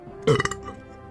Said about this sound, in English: Was that Oliver Reed in disguise? Because he just burped at the end.